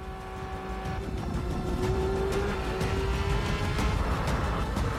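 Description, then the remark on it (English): A racing video game car engine drones steadily throughout while driving in snow, with a rising whine as it accelerates and low rumbling road noise underneath. The sound is continuous and fairly loud, with no talking. “That seems like bad conditions to be racing.”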